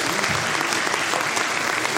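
A room full of people claps steadily, a dense, even wash of many hands that holds at a fairly loud level for the whole stretch, with no voices breaking through.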